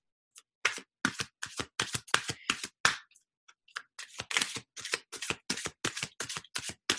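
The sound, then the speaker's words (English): Tarot cards being shuffled for a new moon in Gemini message for the Earth signs, a steady run of crisp, papery riffling bursts with a brief pause midway before the rhythmic shuffling resumes. “And I'm shuffling for the Earth signs for a new moon message.”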